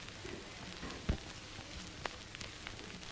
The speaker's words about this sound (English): Playing in the background, we have a combination of vinyl crackle and the ambient sounds of a coffee shop. You hear that coffee shop?